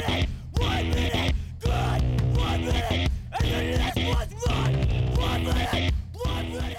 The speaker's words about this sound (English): It's like screamo shit.